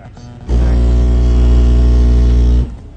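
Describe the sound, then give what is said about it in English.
At a car audio sound-off competition, a car stereo in lane 2 blasts a sustained, extremely loud bass burst measuring 151.6 decibels, lasting about two seconds: a deep droning low tone with buzzing harmonics that starts and stops abruptly. “Vernon burps first, posting 151.6 decibels.”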